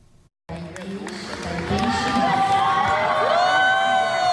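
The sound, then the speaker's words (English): A crowd at the World Deaf Youth Games bursts into loud cheering and shouting as a gold medal is announced and Taiwan's mixed doubles team takes the stage, rising quickly after a brief silence and swelling into sustained high-pitched whoops and excited voices. “As a gold medal is announced to cheers, Taiwan's mixed doubles team takes to the stage of the World Deaf Youth Games.”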